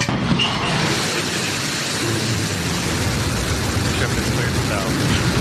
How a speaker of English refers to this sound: Blue Origin's New Shepard rocket blasting off on its way to space with 4 passengers on board.